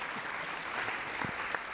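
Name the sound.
classroom round of applause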